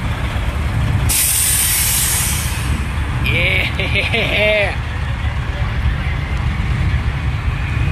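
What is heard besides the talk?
bus pulling away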